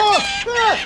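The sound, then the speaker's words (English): Two quick, shrill owl-like screeches, each rising then dropping sharply in pitch, loud, performed by a human voice imitating an owl attacking a man in Times Square. “Hey, that's my owl, dickhead.”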